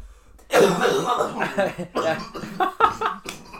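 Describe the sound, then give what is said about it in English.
A loud coughing fit after a smoking hit: a rapid run of harsh, raspy coughs that starts abruptly and keeps going in uneven bursts for about three seconds. “He's coughing it out.”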